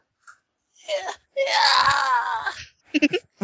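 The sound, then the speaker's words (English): A voice imitates a Wilhelm scream for someone knocked off the side of a ship's deck into the water: one loud, drawn-out wailing cry, bracketed by a short vocal lead-in and a few quick voiced bursts afterward. “Wilhelm screams it off into the water.”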